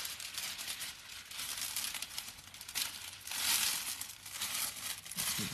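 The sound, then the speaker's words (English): Wrapping paper crinkles and rustles steadily for several seconds as it is handled, with a brief louder burst of crumpling midway and no voices. “For this one, you can do maybe this type of paper.”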